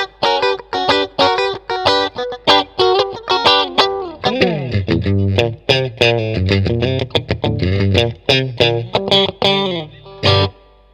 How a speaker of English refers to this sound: Out of phase kind of sound. Funky duck. So that's in between the bridge and the middle pickup.